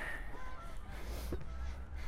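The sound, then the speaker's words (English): Geese honk, a few nasal calls scattered over a steady low rumble of background noise, with no one speaking. “you hear that? Hello, geese.”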